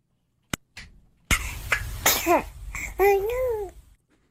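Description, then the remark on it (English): A baby sneezes, a sharp sudden burst followed by a breathy tail, and then lets out a short two-part vocalization like a small dismayed exclamation, close and fairly loud. “Yes, that is a baby sneezing and then saying, oh no.”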